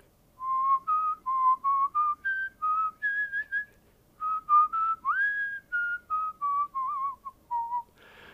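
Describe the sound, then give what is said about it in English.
A man whistles a slow, gentle lullaby melody from an opera alone, clear, with smooth sustained notes rising and falling in short phrases separated by brief pauses. “You could always tell when … was coming your way by that tune he was whistling”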